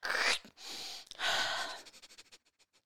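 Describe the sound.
A person makes exaggerated, loud sniffing sounds: two long, forceful inhales followed by a quick string of shorter sniffs that fade out. No one speaks.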